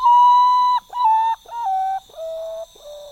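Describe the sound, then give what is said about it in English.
A common potoo's mournful whistled song: five clear notes stepping steadily downward in pitch, the first one long and the rest shorter, loud with no other sounds. “Common potoos are champions of camouflage.”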